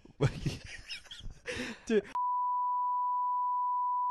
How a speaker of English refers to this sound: That's getting beeped.